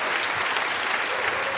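An audience claps steadily, a dense wash of many hands applauding at a fairly loud, even level throughout, with no distinct voices breaking through.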